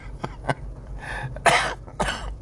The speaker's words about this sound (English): I don't want to have you guys listen to my wet coughing spasms. Trust me, it's way better now than it was, say, a week ago.